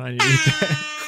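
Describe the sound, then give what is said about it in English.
A loud, brassy air horn blares in a sad, sagging series of about four short 'wah' pulses over a sustained buzzy tone, then cuts off, with no talking over it. “Sad air horn noises.”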